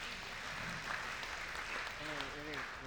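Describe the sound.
A crowd applauds with dense, steady clapping that fills the whole stretch, and a voice starts talking over the applause toward the end.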